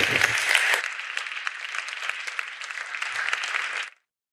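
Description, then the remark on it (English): A crowd applauds two people as they come on stage, with dense, steady clapping that holds at a fairly even level for about four seconds before cutting off abruptly into silence. “Now, I want you to give a warm round of applause as I come back on stage to two people.”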